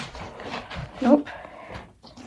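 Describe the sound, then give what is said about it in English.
A big dog gives one short, nasal whimper partway through, briefly rising above ongoing conversation, with people talking before and after it. “Does it involve the dog? Oh, you don't like the dog? He's kind of big and goofy and scared of you.”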